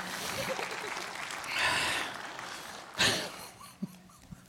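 Audience applause, a steady wash of many hands clapping that swells briefly in the middle, with a sharper burst near the end before it thins out. Fairly soft overall. The audience applauds a person for helping the preacher.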